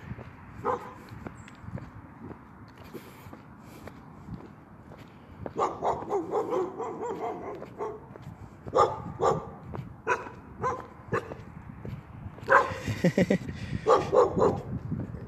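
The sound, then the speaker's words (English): Several dogs bark at a man passing by, in repeated bursts with clusters of sharp barks and some yips, interspersed with quieter stretches and faint footsteps. “What are y'all barking at?”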